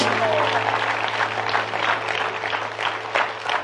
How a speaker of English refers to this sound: Won't we give the Lord a hand clap? Amen. Praise God.